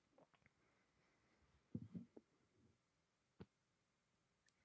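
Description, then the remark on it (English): A faint, muffled burp held back and turned away from the microphone, a short cluster of low gulping bursts in near silence, followed by a soft click and a sharp knock at the very end. “No, I just didn't want to burp into the mic and be that guy.”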